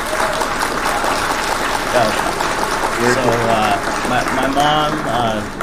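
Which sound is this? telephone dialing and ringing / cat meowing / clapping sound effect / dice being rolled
clapping sound effect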